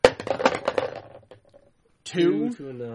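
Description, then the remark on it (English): Dice thrown by two people at the same time clatter and tumble across a hard surface in a burst of quick clicks that taper off over a second or so, followed by a pause and then a person talking. “And I threw at the same time. Yeah. Thus the dice battle we're trying to avoid.”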